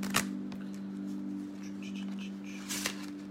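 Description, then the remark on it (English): Tarot cards being shuffled for a tarot reading: two short, crisp riffling bursts at the start and near the end, with faint papery rustling between them over a steady low electrical hum. No one speaks. “Or I can mess up the shuffle real good right there.”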